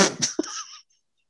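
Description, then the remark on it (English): A single abrupt sneeze: a quick breathy build-up, then a sharp burst trailing off into a hissy exhale, followed by silence. “God bless you.”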